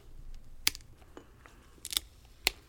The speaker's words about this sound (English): Hey, how about we pop these open and find out? I love it. Sounds like a deal. Okay, here we go.